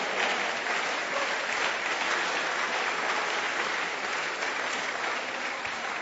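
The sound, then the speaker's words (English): A large audience in a church claps hands for the Lord, a dense, steady wash of applause that stays loud and even for several seconds with no break. “Are you clapping hands for the Lord?”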